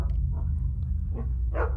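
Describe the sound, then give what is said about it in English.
A female dog barks three times at uneven intervals, the last bark loudest, somewhat muffled, over a steady low rumble with no one speaking. “Ugh, what is she barking at now?”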